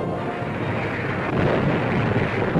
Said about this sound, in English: On come our heavily manned landing craft as naval gunfire mounts to an unbelievable crescendo of thunder, smoke, and fire.